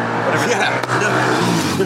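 A motorcycle engine drones steadily as it drives past, a loud, continuous low rumble with a layered, buzzing tone that dips briefly for a moment before carrying on.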